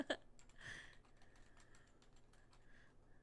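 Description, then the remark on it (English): Quiet, rapid tapping on a computer keyboard, a steady run of light, irregular key clicks with no one speaking. “You're not typing.”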